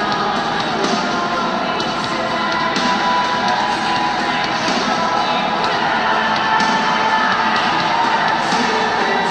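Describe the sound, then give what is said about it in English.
A large wrestling crowd at a main event cheers and shouts steadily at a constant, loud level during a wrestler's entrance, with scattered whoops and higher voices rising out of the roar and occasional sharp thuds cutting through. “I just find it so funny that the fans are getting into this.”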